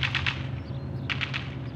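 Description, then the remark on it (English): Gunshots in two quick bursts of three sharp cracks each, separated by a brief pause, over a steady low rumble. “Are those gunshots? Yes.”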